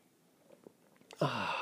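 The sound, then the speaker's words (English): Faint soft clicks and shuffles, then a sudden loud, airy slurp of someone sipping coffee that rushes on steadily for the last half second, with no talking. “Put it up to your lips and get ready for the unparalleled pleasure, the dopamine hit of the day, the thing that makes everything better, the simultaneous sip.”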